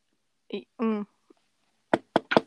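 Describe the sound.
Three quick, fairly loud knuckle raps on wood, knocking on wood after a jinx, in a slightly uneven rhythm, following a short burst of someone's voice a moment earlier.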